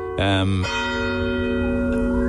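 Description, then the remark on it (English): A loud bell of the Shandon Bells church tower strikes, its rich metallic tone ringing out and lingering in a long, humming resonance that slowly fades. “It doesn't really work on the Shandon Bells, I would think.”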